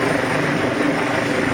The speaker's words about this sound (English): Dozens of drivers rescued by chopper crews.